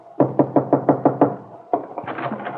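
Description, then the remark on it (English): A quick, even run of about seven sharp taps of fingers drumming nervously on a window pane in a bungalow at the Wakefield Auto Court, then a short pause before a looser, more uneven flurry of tapping. No one speaks. “And at that same moment, in a bungalow at the Wakefield Auto Court, Kitt Mead is standing at the window, drumming nervously on the pane, wondering what has happened to her husband.”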